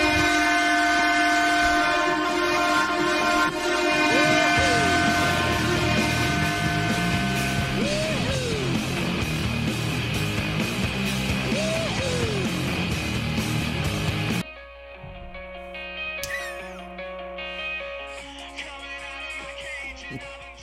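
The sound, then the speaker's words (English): A hockey goal horn blares in a long, steady, loud blast over Brady Tkachuk's upbeat goal music with rising melodic swoops, then the horn cuts out and the music carries on more quietly. “Oh, whose goal music is that?”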